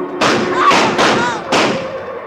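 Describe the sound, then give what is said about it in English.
A speeding car, earlier parked down the road, strikes a woman as it comes past a gate: a loud burst of heavy, crashing thuds, about four overlapping impacts within two seconds, each with a ringing, rumbling tail that fades slowly. “I felt her thrown heavily against me, and then her body went limp in my arms.”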